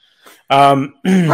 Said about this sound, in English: Sorry, my dog's barking because that's what she does.